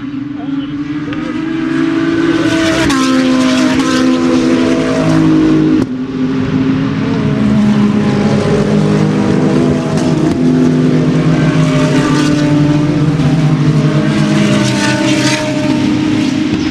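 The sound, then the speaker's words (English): Several race car engines roar and rev hard on a racetrack, their pitch climbing and shifting as the pack accelerates together coming off a full course yellow, loud and continuous throughout with overlapping engine tones. “Let's take a listen as they've just come off a Full Course Yellow.”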